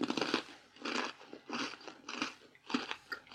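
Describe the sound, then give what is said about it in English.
Crisp crunching of a person with closed eyes chewing a crunchy sandwich cookie during a taste test, with about six bursts in a steady rhythm and no voices. “She's swallowed, but she does not want the second one.”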